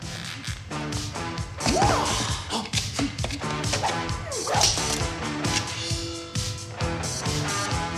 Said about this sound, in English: All right, so everyone has a martial arts master who shoots arrows at him, right? So you learn how to dodge him.